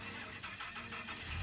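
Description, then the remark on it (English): A Silverado pickup truck engine cranks with a quick, rhythmic chugging from the starter, then catches into a low rumble at the end. It's fairly quiet, with no voices. “loaded into the Silverado, and he started the engine.”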